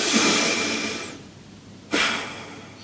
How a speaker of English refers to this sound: I like to do it through my nose, so I close my lips, because when you breathe in and out through your nose, it has additional relaxation qualities to it. So deep breath in through the nose and then release breath.